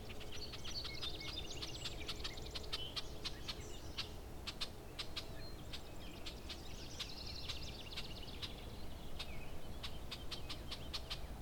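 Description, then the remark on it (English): Soft, low cooing from a mourning dove perched atop bat boxes carries under a busy outdoor scene, with sharp ticking clicks and high chattering birdsong from other birds, red-winged blackbirds among them, layered over steady background noise. “The bats must be annoyed that this thing's singing on top of them.”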